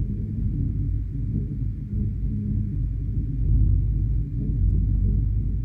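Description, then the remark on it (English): A deep, continuous low rumble of seismic vibration from Castleton Tower, a rock tower, with a faint throbbing pulse running through it like a slow heartbeat, steady and unbroken with no voices. “So with their permission, I brought a recording and see if you can hear the pulse. It's a vibration, it's a resonance, but as you listen, it mirrors our own heartbeat.”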